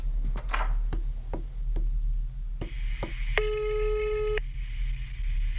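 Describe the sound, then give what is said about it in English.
A telephone rings with a single electronic trill lasting about a second, preceded by a steady series of sharp taps or clicks and a thin tone, with no one answering. “Answer the phone”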